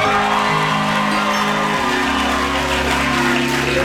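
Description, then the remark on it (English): A large audience applauds and cheers, a dense, steady wash of clapping with scattered whoops that stays loud for the full few seconds, with no speech over it. “At being manipulated into applause.”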